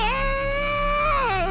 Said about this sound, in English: Can you stop screaming, please? I'm trying to take my 8th nap of the day.